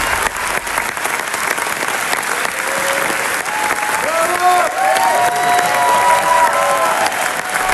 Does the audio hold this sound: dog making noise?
no